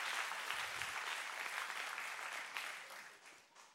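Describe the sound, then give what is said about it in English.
An audience claps steadily, the dense patter of many hands sustained before gradually thinning and tapering off toward the end, with no voices rising above it. “Hey, give them a hand.”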